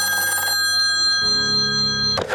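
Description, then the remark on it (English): A telephone rings loudly and continuously, a steady, bright trilling tone that holds for about two seconds before ending in a short burst of noise; a call received at the Gaffney Ledger newspaper in Gaffney, South Carolina, on February 8, 1968. “a managing director for the local paper, the Gaffney Ledger, receives a phone call. And here's that phone call.”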